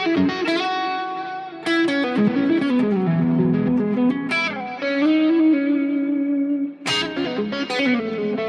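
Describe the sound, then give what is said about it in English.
An electric guitar played through a Synergy amp with the BEBB Friedman, on the rock channel with the distortion backed off, giving mild overdrive, sustained chords and ringing notes, a few sharp strummed attacks, and a slightly gritty, full tone with no voices. “And now I'm on the on what would be the rock channel, although I have the distortion backed off.”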